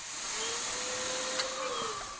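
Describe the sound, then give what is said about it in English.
A vacuum cleaner runs steadily during a bedbug extermination, a loud airy roar with a faint whining tone, one small click partway through and no voices. “They're going to die where they are, or they're going to be lifted in the vacuum.”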